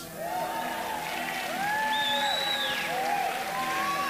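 An audience applauds as a reverend comes to the platform, steadily for several seconds: a dense wash of clapping with rising and falling whoops and cheers scattered on top, staying at an even, fairly loud level throughout.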